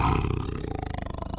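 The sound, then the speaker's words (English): A tiger lets out a deep, rough roar that settles into a pulsing, rumbling growl, loud with no other sounds around it. “Here come two sounds, car and a tiger.”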